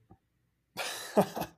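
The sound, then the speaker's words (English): A brief, raspy coughing fit: a rough, breathy onset that builds into two sharp coughs in quick succession, then falls silent. “It's the fact that I can't sit through a 3 hour movie without coughing.”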